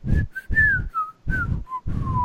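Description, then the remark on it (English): A person whistles a short, continuous tune of about six notes, alternating between inhaled and exhaled whistled notes with audible breathy in-and-out airflow, with no talking. “And so every alternating note was in and out.”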